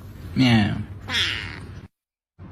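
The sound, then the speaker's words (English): A person's voice imitates a cat meowing, two drawn-out, rising-and-falling meows in quick succession, fairly loud, followed by a brief silence. “Meow. She's so fishy. Meow, see? Meow.”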